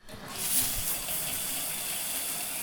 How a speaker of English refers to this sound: The bathroom is one of the few places where you can get a little privacy, right? Standing under that spray of water behind the shower curtain, even more.